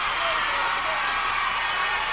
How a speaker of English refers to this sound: Well, ladies and gentlemen, you hear the tremendous roar of the crowd.